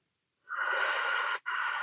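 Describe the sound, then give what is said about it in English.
A long inhaled breath taken during a guided meditation, airy and steady, breaks off for a brief instant and then continues drawing in, with no talking. “So breathing in the energy of the earth and sky.”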